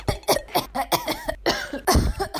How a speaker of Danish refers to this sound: Der er noget støvet her, hvor jeg sover. Så det er sådan lidt. Man bliver sådan lidt hosteagtig